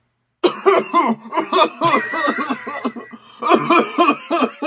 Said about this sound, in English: Man, if only there was a way I could edit out the coughing, but I just can't. I just can't. It's impossible. It's baked into the file. I'm sorry.